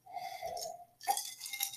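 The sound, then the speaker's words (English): A drawn-out slurping sip of a homemade drink with a steady hum-like tone for under a second, then a short pause and a brighter, breathy burst like a swallow or exhale. No one speaks. “Okay, I'm going to take a sip here of a little drink I made.”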